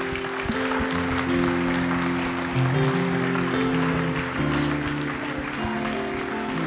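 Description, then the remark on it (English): A church audience claps steadily and densely for several seconds, the crowd applause mixed with sustained, held musical tones underneath. No one speaks over it. “Church, let's give a great clap, shall we?”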